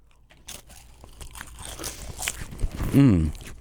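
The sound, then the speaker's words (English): Someone eating potted meat made of beef hearts, cooked beef fatty tissue and meat broth, taken with wine: scattered soft crunchy bites and wet chewing clicks that build in loudness, ending with a short, low hummed vocal sound of tasting. “Let's eat our potted meat”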